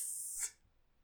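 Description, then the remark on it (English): A person imitates a snake with a single sharp, breathy hiss lasting about half a second, bright and high-pitched, then cutting off abruptly into near silence. “And then Bella out of nowhere turns into a snake. What? Alone! I hissed.”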